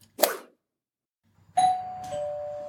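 A short sharp click, then after a pause a doorbell chimes as someone arrives at the door: a clear ringing tone that slides into a slightly lower second note and lingers, with no one speaking.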